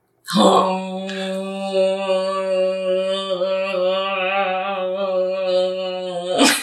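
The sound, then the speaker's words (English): A single loud, sustained horn blast, used as a spoiler warning, drones on a steady low pitch for about six seconds, starting and cutting off abruptly, with no voices around it. “Okay, spoiler horn time.”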